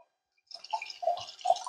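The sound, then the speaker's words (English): Liquid splashes and trickles after a brief silence as a drink is poured into a glass, a bubbly pouring sound with small dripping plops. “And on that point, as I pour up,”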